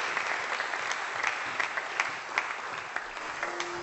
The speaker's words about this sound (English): So give them a big round of applause as they come up here to share with us.